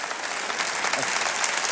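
An audience applauds in a dense, steady wash of clapping that holds an even loudness from start to finish, with no clear voices breaking through.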